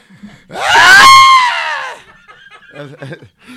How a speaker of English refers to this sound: You keep screaming like that?